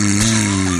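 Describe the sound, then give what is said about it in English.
A voice imitates a mother's loud snoring with a brief, rough, rattling snort held steadily for under a second, prominent with no other sounds around it. “Your mom's snoring. Deafening.”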